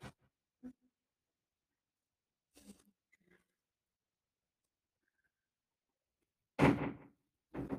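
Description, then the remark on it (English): A door swings open: a few quiet clicks and rattles, then a louder creaking thump near the end with a final bump. No one speaks. “How did my door open?”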